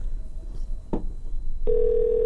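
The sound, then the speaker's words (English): A brief click, then the steady electronic ringing tone of an outgoing phone call starts and holds unbroken for the rest of the moment, fairly loud, with no one talking; the call goes unanswered. “I'll wait till the phone call is over.”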